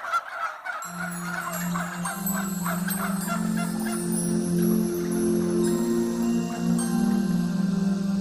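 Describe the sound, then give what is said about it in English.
A crowd of turkeys in the back of a truck gobbles and calls continuously, a dense overlapping clamor of bird voices over a steady low engine-like hum, loud throughout. “The turkeys in the back of the truck.”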